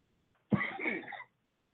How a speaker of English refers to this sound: See, I still have that little bit of cough.